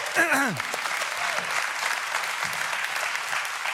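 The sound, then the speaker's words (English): A church audience claps for a woman who read out Isaiah 43, steadily in a dense, sustained wash of applause, with a brief voice rising over it at the very start before the clapping carries on alone. “Let's give this lady an applause.”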